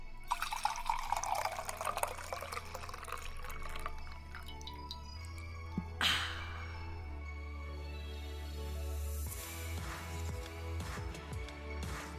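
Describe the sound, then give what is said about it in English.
Coffee pours steadily into a coffee cup close to the microphone, the tone rising as it fills, followed by a few soft drips and trickles. No one speaks. “I'm going to pour my coffee into my coffee cup close to the microphone.”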